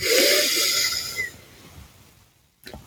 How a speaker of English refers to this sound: Breathing in.